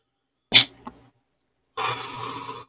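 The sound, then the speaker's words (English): A sharp cough bursts out with a smaller follow-up, then after a short pause a longer, rough hacking cough rattles for nearly a second, from a person coughing after smoking a joint. “Goddamn, prepare to cough. It's coming for you just like it came for me.”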